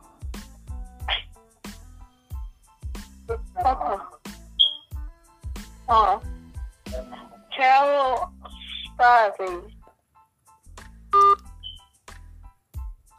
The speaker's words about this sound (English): What the hell? One moment. Phone disconnected. Oh, Lord. Ain't that something? Phone just hung up. One moment here. Hold on.